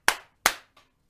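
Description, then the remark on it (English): Two sharp hand claps about a third of a second apart, followed by a much fainter third clap, with no talking; each has a crisp attack and a short decaying tail. The claps are made during a livestream to check whether its audio is in sync. “Do a little clap for us.”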